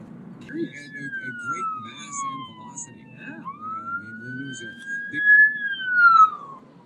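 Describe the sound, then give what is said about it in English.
An ambulance siren wails in long rising and falling sweeps, growing louder as it nears and passes, over a low rumble of road traffic. “ambulance.”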